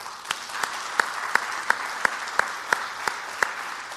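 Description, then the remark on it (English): A church audience applauds together in praise to God for a testimony, a dense wash of clapping from many hands, with a few claps ringing out in a steady, even rhythm. No one speaks. “I had the urge this morning to lead in an applause of praise to God for the testimony and for his willingness.”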